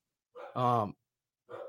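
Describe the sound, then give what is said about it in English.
A dog gives a loud, strained bark, then a shorter, softer bark follows about a second later, with nothing else around them. “The dog is fired up.”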